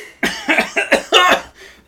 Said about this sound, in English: Stop coughing so loud.